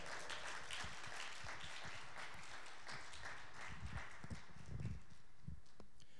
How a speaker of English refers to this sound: Can we get a round of applause for our guest? And yeah, there we go.